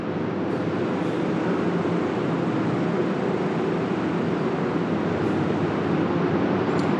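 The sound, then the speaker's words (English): A modern locomotive rumbles steadily as it passes by, leaving track 5 at Penn Station, a loud, dense mechanical roar with a few brief, faint high-pitched squeals from the wheels; no one speaks. “That's just screeching of another locomotive that is a very modern locomotive, so it's not the train that we're looking for here.”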